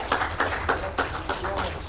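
Applause from an audience: a steady run of sharp, rhythmic claps at moderate loudness over a low background rumble and faint murmur.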